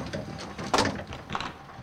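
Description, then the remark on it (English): A bus door opens with a sharp pneumatic hiss and a clunk as the bus stops at a bus stop on the side of the road, followed by a softer second hiss as it settles, over a low engine rumble. “The bus stops and the door opens.”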